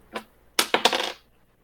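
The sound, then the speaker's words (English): Dice clatter across a hard tabletop: one small click, then a quick rattling tumble of several knocks that settles within about half a second. Fairly crisp, with no talking. “Then throw dice at it.”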